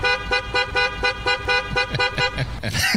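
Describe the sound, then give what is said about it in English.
A loud car horn, the horn from the film Caddyshack, honks in a quick, steady series of about ten short blasts, a rhythmic, almost musical beeping pattern, ending in a brief burst of brighter, messier noise. “And last but certainly not least, Great Moments in Honking, quite possibly the greatest horn of all time from Caddyshack.”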